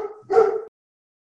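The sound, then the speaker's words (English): A dog gives a short whine that rises into a single sharp bark, then everything goes silent. “Sorry about that, my dog.”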